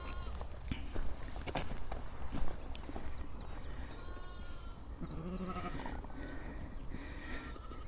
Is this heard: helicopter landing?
no